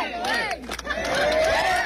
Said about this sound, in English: Everybody's cheering. Everything's all good.